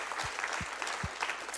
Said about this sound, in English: Give a good applause for everybody who so sacrificially gave.